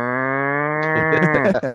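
A single loud cow moo, starting as a steady drawn-out low tone before turning rough and ragged toward the end, with no other sounds around it.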